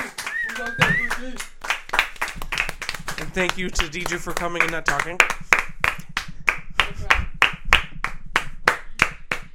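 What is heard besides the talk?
hand clapping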